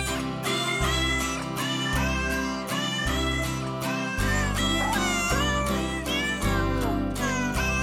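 Cat meows pitched and sequenced into a festive Christmas melody, playing loud and steady over a bouncy bassline and backing music, with no talking.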